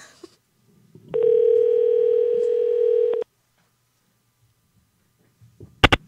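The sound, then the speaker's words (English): A phone ringback tone for an unanswered call that is forwarded to an automated voice system sounds once, a steady electronic buzz lasting about two seconds, followed by silence and then a brief sharp click near the end. No one speaks. “Your call has been forwarded to an automated voice system. You know, it makes sense because I don't answer my phone either, ever.”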